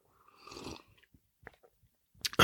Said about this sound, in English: Take another sip of my preferred beverage here.